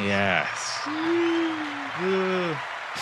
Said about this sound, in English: Push the button. What? The clapping button.